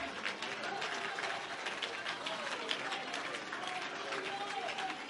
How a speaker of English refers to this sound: Come, somebody clap one more time. For those of you that don't feel anything yet, clap again.